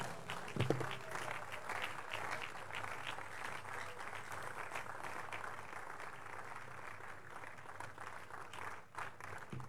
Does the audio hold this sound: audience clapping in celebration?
yes